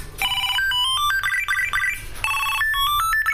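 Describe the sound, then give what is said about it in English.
A Bluetooth Tile tracker plays its find ringtone, triggered from a phone: a bright electronic melody of quick high beeping notes, playing twice in a row, loud and clear with no talking over it. “As you can hear, the phone found it.”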